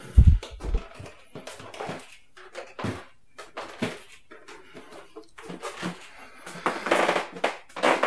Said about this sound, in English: Okay, I'm in the hallway. Everything you're hearing is just creaks from creaky floors.